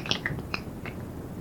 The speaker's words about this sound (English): And the first thing you have to be able to do is snap your fingers.